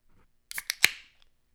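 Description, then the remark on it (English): Beer, a Peach Smoothie IPA from Mighty Squirrel, splashes as it's poured: three quick, bright, hissy bursts in about half a second, the last one loudest, then a short fizzing fade. No one speaks. “A little splash effect on that one.”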